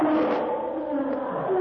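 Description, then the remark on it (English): A huge black-maned lion roars savagely as it bounds into a pit, one loud, sustained, rough growl that fills the whole moment with no pause, powerful, with no voices around it. “Toldo, the huge black-maned guardian of Atea's treasure cave, bounds into the pit, roaring savagely.”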